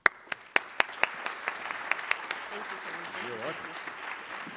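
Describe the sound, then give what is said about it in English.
An audience applauds to welcome a speaker to the stage, with sharp, fairly sparse claps ringing out over the first two seconds, then settles into a low crowd murmur with a faint voice underneath. “Please join me in welcoming him.”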